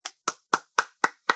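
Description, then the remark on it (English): Six crisp hand claps in a steady, even rhythm, about four per second, fairly loud, from what sounds like a single person, with no talking, applauding to welcome a guest. “Oh, please, please, withhold your applause.”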